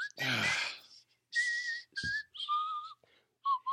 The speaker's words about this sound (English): I could start whistling with it.